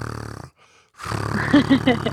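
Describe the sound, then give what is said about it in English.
A person imitates a contented cat with a low, rumbling throaty purr, breaks off for a brief silence, then resumes a louder rolling rumble with a few pulsing bursts toward the end. “My cat sounds like that when he's sleeping or when he's happy.”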